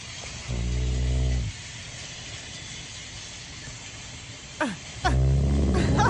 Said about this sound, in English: My lab snores really loud like that, too.